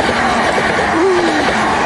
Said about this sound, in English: Train going past.